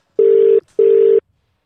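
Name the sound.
telephone call ringing out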